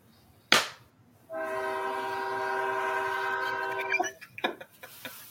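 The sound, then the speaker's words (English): A passing train at 3 o'clock in the morning blares its horn in one long, steady multi-tone blast lasting nearly three seconds, preceded by a sharp bang and followed by clattering rail noise. “Until it's done, it has to beep its horn, honk its sea horn.”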